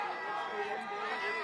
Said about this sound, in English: Woodville fans coming alive. They've got something to clap about. Yeah, it looks like their crowd has grown a little bit from that softball crowd.